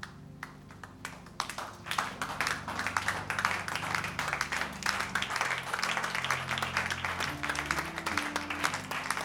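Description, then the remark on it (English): An audience at the Keeper's House Chapel International in Madina Estate, Accra, claps for Jesus steadily over sustained low organ-like tones, the dense clapping continuing for the whole stretch at a moderate, even level without any talking. “Were you clapping for Jesus?”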